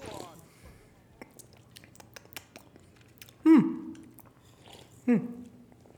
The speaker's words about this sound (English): That, ladies and gents, is the sound of a couple, let's say, drinks being cracked.